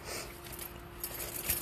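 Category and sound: household object, keys jangling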